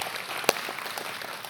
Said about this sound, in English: Let's get some applause for that. That's absolutely appropriate.